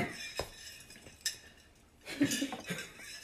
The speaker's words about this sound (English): put your fucking chandelier away. Your wind chime. Hurry up.